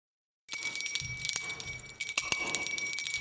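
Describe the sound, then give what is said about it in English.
A bright, metallic bell rings repeatedly with a jangling shimmer and a steady ringing tone that carries throughout, loud, with no voices. “Every time a bell rings, we give our Top 5.”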